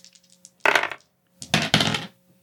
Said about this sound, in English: Which means we come again to when you fight all the gods at once, apply your enhancements and roll 2d6.